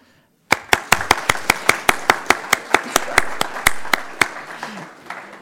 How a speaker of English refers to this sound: So we'll give him a round of applause when he comes in here.